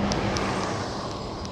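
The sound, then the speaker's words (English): A school bus drives by, a loud, steady rumble of engine and tire noise filling the moment with no one speaking. “There goes another school bus.”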